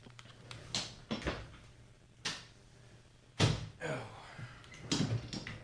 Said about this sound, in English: But let me close this door and we'll get started.